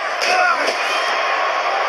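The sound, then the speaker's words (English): Two sharp, heavy cracks of a steel chair swung at and striking the wrestler the Undertaker, about half a second apart, ring out over a loud, constant arena crowd roar; the chair is left warped and bent. “And now the steel chair.”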